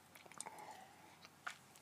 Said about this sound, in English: Take another sip of the bubbly here, otherwise known as ice cold water.